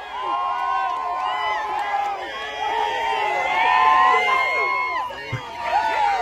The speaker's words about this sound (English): Just a bunch of people shouting, right? Well, no, it's not just a bunch of people. It's a bunch of Auburn fans shouting. That is Coach Carnell Williams, also known as Cadillac Williams, as he took his first home Tiger Walk as Auburn's interim head